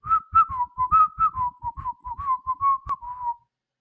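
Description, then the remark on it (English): A man, the character Catface Laguna, whistles a quick, lively tarantella tune in bouncy, evenly spaced notes for a few seconds as he walks away smiling, clear, with soft low thumps keeping time beneath it before it stops. “Be sure to eat the lomo before the señoras get to it, said Catface Laguna before clapping his hands and walking away, smiling and whistling a tarantella.”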